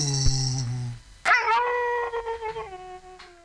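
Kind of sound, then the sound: animal, dog howling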